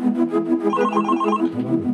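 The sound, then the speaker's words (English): A telephone rings loudly, a fast trilling warble repeating in rapid pulses with no pause across the whole stretch, and no voices. “Was that him on the phone before?”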